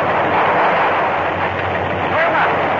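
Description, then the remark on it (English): Loud, rolling thunder from an approaching storm in worsening fog, a dense, continuous rumble that holds steady for a few seconds without any clear break or separate cracks. “There's a storm coming up, and the fog is getting worse.”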